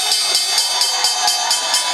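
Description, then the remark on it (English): The New York Stock Exchange opening bell rings loud and steady, a bright metallic clangor pulsing in a quick, even rhythm about four times a second, with faint crowd murmur beneath. “Opening bell right now.”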